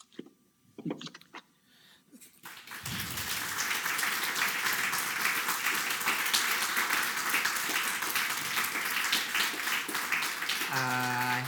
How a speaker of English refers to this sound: I hope you can hear that applause, Katherine.